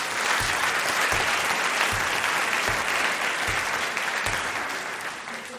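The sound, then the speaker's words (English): Sustained applause from an audience at a debate event, a round of applause for the program's supporters: a dense wash of clapping that stays steady and loud for several seconds before easing slightly at the end, with a few heavier low thumps spaced through it. “First, I want to say thank you to everybody who's given us support, and a round of applause for all of them.”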